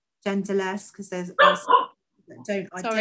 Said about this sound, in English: Sorry, that's the dog. All right, hi there. What's the dog's name? It's Yancy.